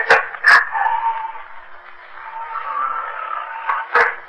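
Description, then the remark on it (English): A door, blown open and shut by the wind, creaks on a long, wavering, strained squeal, broken by a few sharp knocks or bangs at the start and again near the end as it swings and shuts. “The door. The wind blew it open and shut again.”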